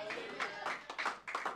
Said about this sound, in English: Oh my God, is this clapping? Are you clapping? Are you clapping for me or are you clapping for Jesus?